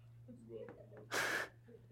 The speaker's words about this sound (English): Throw avocados away. They're not good anyway. Collective gasp. That was mean.